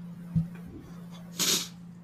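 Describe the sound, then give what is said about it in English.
One abrupt sneeze bursts out with a hissing, breathy release, set against a steady low electrical hum; there is no talking. “I'm fighting off a sneeze for the last several minutes.”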